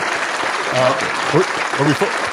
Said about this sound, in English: That's a long clap